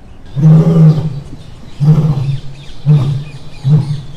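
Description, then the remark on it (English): A lion at a zoo roars four times in a row, deep rumbling calls that shorten and fade slightly with each repetition, loud with no talking. “As they look at the roaring lion, they notice two baby lion cubs playing a little far away.”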